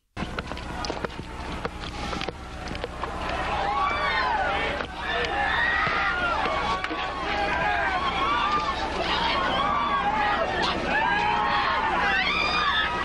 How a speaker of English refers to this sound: This video doesn't show it, but there's another video that shows literally everyone is just stuck there, like sandwiched in, and no one can move, but they're begging for help as this nightclub catches on fire.